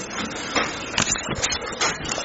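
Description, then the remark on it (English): A steady mechanical grinding and rattling as a garage door motor runs and the door closes, with a few louder clunks and jolts along the way. No voices. “20 expedite, we're in the garage, it's closing.”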